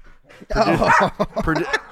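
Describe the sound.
A dog named Dexter lets out a run of excited barks and whiny yelps, followed by a few shorter, choppy bursts, with some human voice mixed in.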